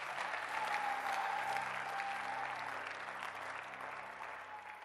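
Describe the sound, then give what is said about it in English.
A church audience claps at the preacher's urging during a sermon, dense, continuous applause that holds loud for nearly five seconds, with a faint sustained tone and low hum running underneath. “Come on, clap your hands.”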